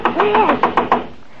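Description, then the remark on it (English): A quick, even run of about seven knocks on a door, a woman excitedly knocking at a notorious criminal hangout in New York's Lower East Side, each a sharp rap, with a voice faintly sounding beneath the first few before the knocking stops. “we see Della herself excitedly knocking on the door in a notorious criminal hangout in New York's Lower East Side.”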